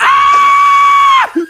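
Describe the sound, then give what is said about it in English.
A single long, shrill scream held at a steady high pitch for over a second, loud, then cut off abruptly with a short vocal sound after. “How could she even tell if they were screams of consent or screams of despair?”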